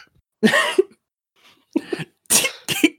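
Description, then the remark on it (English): A run of four sharp, breathy bursts, the first long and forceful, then three quicker ones close together: a person sneezing and spluttering, loud, with no talk over them. “Another thing I do want to mention before I move on, I'm going to sneeze.”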